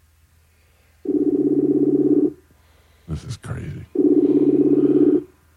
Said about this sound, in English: answer the goddamn phone.